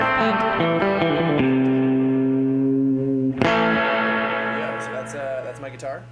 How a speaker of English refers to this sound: I'm going to subject you listeners, you lovely listeners, as my guinea pigs, and I'm going to try to play along. Let's hear here's some guitar.